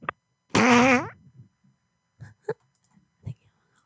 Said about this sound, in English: Oh no, I'm farting. Every time I fart, that means it's time to go poopy.